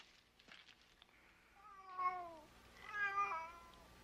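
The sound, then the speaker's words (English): Two drawn-out, wavering cat meows, fairly loud, the second higher and more strained, following a few faint clicks and rustles in otherwise quiet surroundings. “It sounds like a track of some endangered species in the jungle.”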